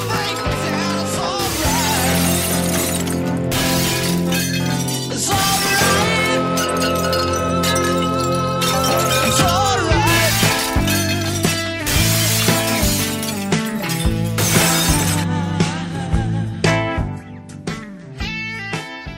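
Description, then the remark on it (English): Loud, repeated crashes of objects being smashed and glass shattering in an Anger Room, where people smash things to relieve stress, one burst after another for most of the stretch, with ringing tones lingering between the breaks before fading near the end. “The article, The New York Times, Anger Room is a Smashing New Way to Relieve Stress.”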